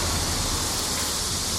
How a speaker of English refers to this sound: Are those crickets? They're not crickets. Ah, cicada.